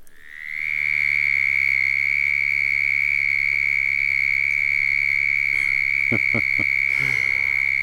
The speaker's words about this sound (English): the air is rapidly forced back and forth over the vocal cords at approximately 75 times per second to produce a high-pitched trill of the southern toad, Bufo terrestris, for example.